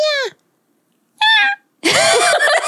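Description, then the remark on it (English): A voice imitates a high-pitched animal screech in three loud bursts: two short, squealing cries separated by pauses, then a longer, harsher, raspy scream. “He said it was like a high pitched screeching. So it was like a high pitched scream.”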